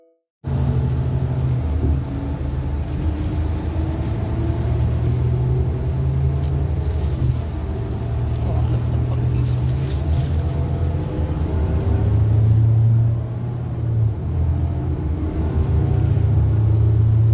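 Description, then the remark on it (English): A deep, steady rumble of a Route 61 bus, number 2347, and road traffic at 8:46 a.m. fills the whole stretch, loud, with the low drone shifting slightly in pitch as the vehicle moves. No one speaks. “Route 61, 1545817, bus 2347, present.”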